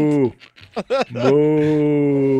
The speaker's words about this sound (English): It's a YouTube video of cows.